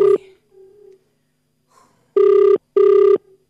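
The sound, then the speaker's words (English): Two loud, evenly spaced ringback tones of an outgoing phone call, each lasting about half a second, with a brief fainter beep before them and near silence around. “Good, it's ringing.”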